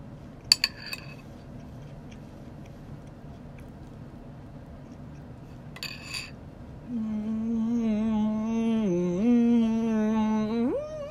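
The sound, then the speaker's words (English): A spoon clinks against a bowl of soggy cereal as someone eats, in two short bursts of bright metallic taps several seconds apart, followed by a sustained, wavering low hum. “1 second, eating soggy cereal.”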